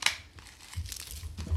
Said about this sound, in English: They were meant to be confetti cannons, but that didn't really work. But they work if you throw them.